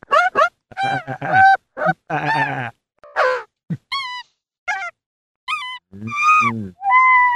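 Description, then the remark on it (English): A synthesized monkey sound from an animal-emulating VST plugin: a loud series of short, nasal hoots and chattering cries, some rising and swooping in pitch, broken by brief gaps, with no talking. “Oh, the monkey's quite good.”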